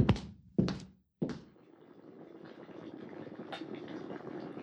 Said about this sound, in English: Let's get that kettle back on sharpish.